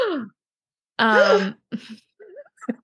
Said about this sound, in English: So we're going to come back to it now and I'm going to do another gasp.